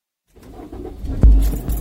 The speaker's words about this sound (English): Before I knew it, I was in my car driving to his place.